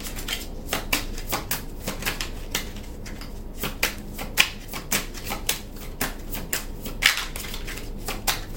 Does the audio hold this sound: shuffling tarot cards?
yes